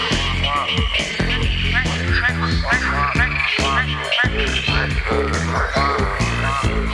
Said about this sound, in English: Resonating sacs amplify it many times so that some calls can be heard for over a mile away. And this is my forte, frog calls. It's excellent. Each species of frog has a different call, and some of them are crazy.